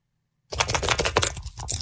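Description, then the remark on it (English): Dice rattle and clatter in a quick, dense burst of small hard clicks, starting abruptly after a moment of silence and continuing steadily, fairly loud, with no voices. “you have the woke word dice, right? I was told you have captured that sound.”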